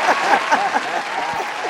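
A steady wash of clapping from a crowd, dense and fairly loud, with a few voices calling out over it.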